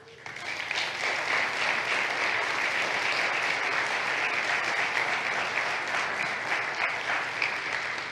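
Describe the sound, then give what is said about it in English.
A church audience applauds its deacons, clapping steadily for about eight seconds, a dense, even wash of hand claps that starts quickly and holds at a consistent loudness throughout, with no one speaking over it. “Why don't you just applaud them for a moment?”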